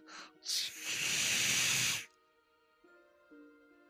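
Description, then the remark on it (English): A person voices a loud, sustained snake-like hiss lasting about a second and a half, preceded by a short breathy burst, then fading into a quiet low hum. “I practice it all day. No one gets the hiss anymore. Fine, hiss.”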